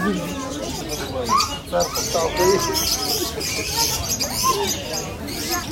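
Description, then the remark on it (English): A dense chorus of many small birds chirping and squeaking continuously in the bird and pet shop section of the Souq Waqif market, where about 20 or 30 stalls sell birds, layered over a busy murmur of people talking in the background. “We're in the section of the Souq Waqif that is full of birds, like bird shops and pet shops. Can you hear them?”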